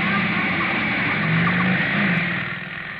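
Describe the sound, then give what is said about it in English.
A motorcycle speeds past across the drive of a Bel Air mansion, ridden by a black-haired man in a leather jacket with a blonde woman riding behind him. Its engine is a loud, steady roar with a buzzing drone that shifts slightly in pitch before easing off near the end. No one speaks. “Motorcycle, jet-propelled by a black-haired lunatic in a leather jacket with a blonde beauty riding behind him.”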